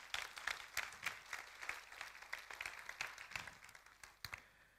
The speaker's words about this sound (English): If you agree with me, let's give God a clap of victory. Do that.